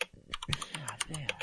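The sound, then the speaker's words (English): Rapid clicking and clacking of computer keyboard keys during a 60-second typing test, a quick irregular burst of keystrokes with a faint voice murmuring underneath. “You don't have to hear that clicking and clacking.”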